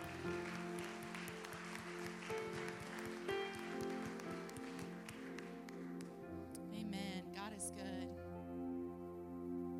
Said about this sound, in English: Come on and give Jesus one more hand and clap of praise.